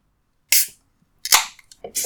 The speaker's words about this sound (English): But as a tasty little treat just for you, please enjoy these next few moments of uncensored sipping, burping, and cracking just for your pleasure.